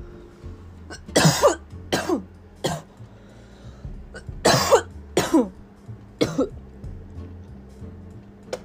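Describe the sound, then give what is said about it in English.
A harsh coughing fit, loud: bursts of hacking coughs come in two clusters, each a rapid run of three or four, with short wheezy gaps between over a faint low hum. “Cough up a lung.”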